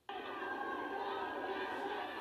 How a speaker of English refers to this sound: The solemn moment taking a different tone when people began chanting and booing.